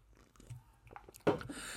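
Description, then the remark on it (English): A quiet sip of Fernet Branca: faint wet mouth clicks and small taps, then a short, sharper slurp followed by a soft airy hiss as the liquid is drawn in. No one speaks. “So, sorry, I'm drinking Fernet Branca.”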